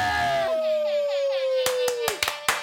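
A handful of sharp hand slaps, high fives, land in a quick, uneven burst of about five smacks, following a long falling vocal whoop that glides downward.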